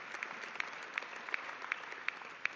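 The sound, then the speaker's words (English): An audience claps together during a sermon in a steady, even rhythm, a dense wash of hands with regular sharper beats, moderately quiet, with no one speaking. “I was anticipating moments of claps several times earlier in the message.”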